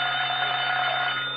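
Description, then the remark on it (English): A telephone bell rings continuously and loudly, a steady unbroken metallic trill that fills the whole moment with no one speaking over it; it is the phone at 79 Whistle Vista. “Would that be your voice or the telephone?”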